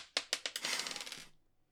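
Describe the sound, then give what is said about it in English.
A tiny six-sided die (d6) is rolled for damage in a tabletop game, clattering across a hard tabletop, a few sharp bouncing clicks quickening into a rapid rattle before it settles and goes quiet. Fairly crisp, with no talking. “But then I've got this Crimson Rite, which is 1d6. Just trying to... locate that dice.”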